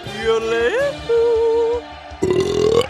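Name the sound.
loud burp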